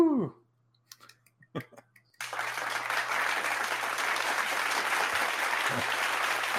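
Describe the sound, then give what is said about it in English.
A brief voice and a few scattered claps give way to a sudden burst of dense, steady audience applause welcoming back a contestant, staying loud and even until the end. “I was waiting for the applause.”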